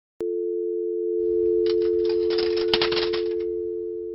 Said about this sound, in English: that was like soothing analog sounds, like the old sound of a clock ticking or typewriter, you know, or even like a dial tone or something, pushing buttons, that kind of thing.